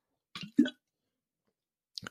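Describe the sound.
A quick watery kerplop, two short splashy bursts with a low thump, then silence before a voice starts speaking at the very end.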